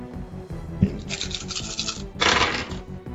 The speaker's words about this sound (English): A lot of dice in that hand. Oh. I heard. Playing Yahtzee.